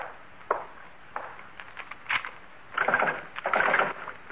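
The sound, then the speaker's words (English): A back door is pushed shut with a few wooden knocks, followed by rattling and scraping as a lock or bolt is worked, with no talking. “I'll lock up.”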